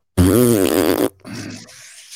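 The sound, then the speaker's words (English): A loud, drawn-out fart sound effect lasting about a second with a buzzy, wavering pitch, followed by a quieter, raspier tail that trails off. “They might as well end everything she says with a giant fart.”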